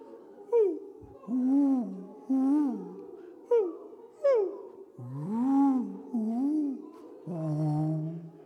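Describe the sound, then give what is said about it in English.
Several people imitate owl hoots with overlapping, wavering "woo" calls, some short and rising, others long and sliding, repeated in a loose chorus of voices. “So what does an owl make? What sound?”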